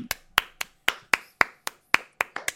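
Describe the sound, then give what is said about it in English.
Steady clapping, about ten sharp, crisp claps in a quick, fairly even rhythm, each one distinct with short gaps between, and no voices underneath. “Oh, stop clapping. It's fine. You keep clapping.”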